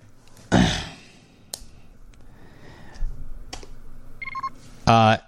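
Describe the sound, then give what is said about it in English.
A short, bright electronic comm beep of layered tones from the main cargo hold of a spaceship sounds near the end, following a breathy sigh and a few faint clicks over a low background hum. A brief voiced sound closes it. “you hear from the main cargo hold a comm beep.”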